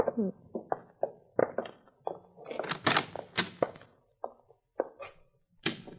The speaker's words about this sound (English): Just a minute. What are you locking the door for?